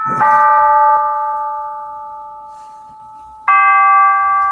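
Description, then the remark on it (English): Two clear, ringing chime notes from a recording of Big Ben's Westminster chimes, a sound file found online. The first note sustains and slowly fades before a second bright strike rings out, with no talking. “Little Westminster chimes out of Big Ben.”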